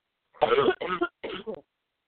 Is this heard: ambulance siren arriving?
no